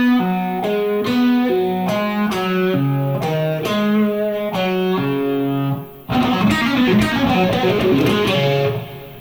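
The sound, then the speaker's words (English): Guitar plays a blues shuffle rhythm using the open strings, a steady, lilting pattern of repeated low notes that turns into louder, denser strummed chords for the last few seconds. No one speaks. “So there's that blues shuffle rhythm coming at you again.”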